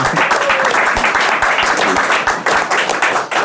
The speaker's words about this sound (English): Round of applause.